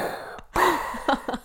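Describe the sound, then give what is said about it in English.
A voice imitates heavy gas mask breathing, a long raspy breath drawn in followed by two shorter huffing breaths. “I enter into the room with my gas mask on, I'm like breathing like Darth Vader”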